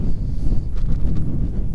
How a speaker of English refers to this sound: Sorry, I have like 6 windshields on the microphone, but it is staggeringly windy today, so I do apologize for any roar. I can only say that however uncomfortable it is for your ears, I promise you it's more uncomfortable for mine.